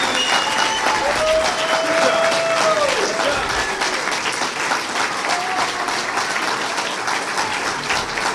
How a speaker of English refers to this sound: Listen to the applause, by the way. Hold on.